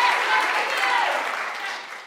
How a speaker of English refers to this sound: can you give a big round of applause for Tom Selinsky, because he does the unsung hero work.